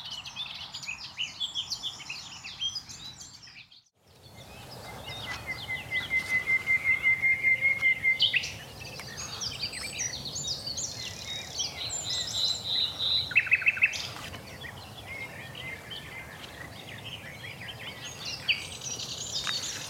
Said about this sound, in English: But as you look around and you suddenly see the spots from where the birds are singing, and you could hide 100 nightingales in there and you wouldn't see one.